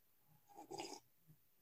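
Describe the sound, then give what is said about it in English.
A single quick slurping sip of coffee, an airy, hissy intake lasting about half a second, fairly quiet, with no one speaking. “Sorry, that was probably a bad time to sip, but you know.”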